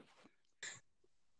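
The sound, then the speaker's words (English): One short, sharp cough bursts out, loud against a quiet background, with a faint breathy sound just before it and no talking. “Besides your cough, how are you?”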